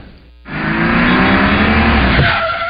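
A car brakes hard with a loud, sustained tire squeal lasting about two seconds, harsh, then easing off into engine and road noise. No one speaks.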